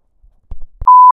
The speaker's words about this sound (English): And you heard that little sensor beep because I messed up on that last recording.